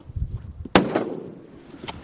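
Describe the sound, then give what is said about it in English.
A single loud rifle shot, fired by a hunter standing in a boat on the tundra, cracks out sharply and kills a caribou. A rumbling tail fades over a second, with a fainter second crack near the end over low background rumble. “Tony stands up and sets his rifle, while his wife and son tense in anticipation.”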